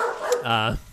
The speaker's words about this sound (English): got some interruptions from my dogs, which I think is fitting for our show.